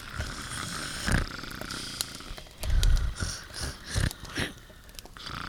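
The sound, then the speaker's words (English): Two people lying close together asleep under a fir tree snore: several irregular, rumbling snores follow one another, each a low, rough breath of moderate loudness with brief pauses between them. No one speaks. “When we left our heroes, they were clenched in a most intimate manner under a fir, though still sawing logs for Morpheus.”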